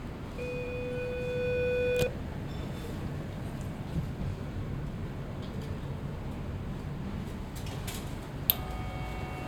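A door buzzer for number 201 is pressed and sounds once, a steady electronic buzz lasting about two seconds, over a constant low ambient rumble; a short, faint second tone follows near the end.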